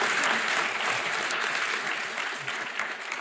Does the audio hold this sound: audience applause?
yes